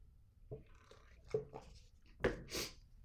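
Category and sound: food or drink, sipping coffee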